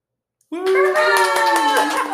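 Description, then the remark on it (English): After a brief silence, hands pat out a quick, steady drumroll on a surface for about a second and a half, with a voice holding a sustained tone over the rapid taps. “Which is, I'm going to be like some like drum.”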